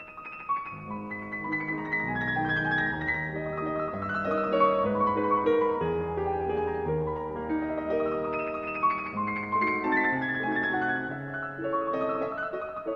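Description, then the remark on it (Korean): Busy solo piano music, the second variation on a bell-like theme, plays steadily at moderate loudness, with dense chords underneath and bright, quickly repeated high notes struck by the right hand ringing over them like agitated bells. No one speaks. “오른손에서 계속해서 연타를 치면서 복잡하게 들리는데요.”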